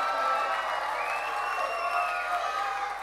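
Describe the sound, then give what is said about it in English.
A group of kids cheers and shrieks loudly together in a contest to see which group cheers the loudest, a dense, high-pitched wall of shouting and whooping that holds steady for a few seconds before tapering slightly. “Whoever cheers the loudest. So, these guys here, cheer.”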